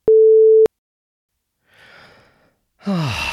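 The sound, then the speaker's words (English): A short steady electronic beep, then a breathy exhale and a loud, voiced gasping pant of someone out of breath after 30 seconds of jogging. “I'm out of breath now. I did 30 seconds of jogging and I'm sweat's pouring off my forehead.”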